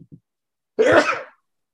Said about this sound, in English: Bless you.